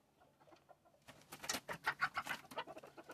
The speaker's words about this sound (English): You're listening to the chickens playing music. Playing piano.